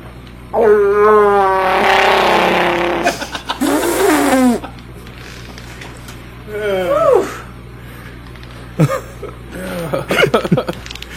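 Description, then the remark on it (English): A woman's voice does an impression of Chewbacca's growling, warbling roar: long, strained howls with wavering pitch, repeated several times with short pauses, loud and raspy, trailing into shorter yelps. “You guys want to hear the best Chewbacca impression I've ever heard?”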